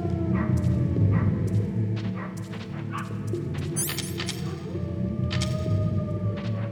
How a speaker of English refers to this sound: I'm not sure what that was. I think that was a puppy.